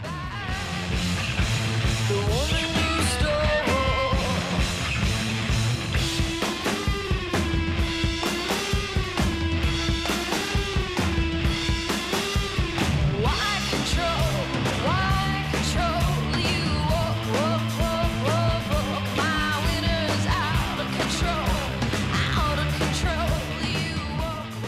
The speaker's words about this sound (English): Yeah, that little kind of ringing guitar sound is cool. Yeah, that's a good skronky guitar. I like to call it guitar playing downtown guitar.